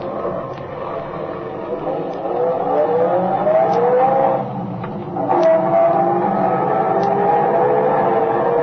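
An old car engine rumbles steadily, revving up in rising sweeps as it pulls away and accelerates, loud, with a brief dip before it picks up speed again.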